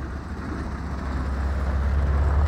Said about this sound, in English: On a highway about 70 miles from Denver, you hear sounds of trucks, winds, and rustling.